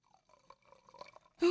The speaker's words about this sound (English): It's the champagne. It's the champagne. Pour it. Pour it in next to the microphone. Okay, hold on.